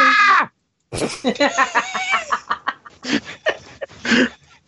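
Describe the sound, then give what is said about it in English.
A loud, harmonic vocal howl bursts out briefly, then after a short pause a longer run of strained, warbling growls and yowls follows, a person playing a Wookiee imitating its scream. “is now playing a Wookiee, and that will be his Wookiee scream.”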